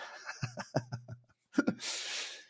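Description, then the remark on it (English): A vocalized yawn: a low, wavering voiced groan with a few pitch breaks, then a brief catch and a long, breathy exhale trailing off at the end. “Gee whiz, yawn.”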